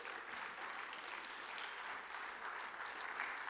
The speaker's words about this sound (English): I never thought I'd get applause for sticking my butt out at our church